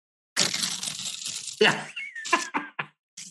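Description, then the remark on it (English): A harsh, fuzzy electric guitar played through distortion: a sustained gritty chord, then a sliding high note and a few short choppy stabs, with no one talking. “I'm gonna demonstrate to you what that sounds like through distortion.”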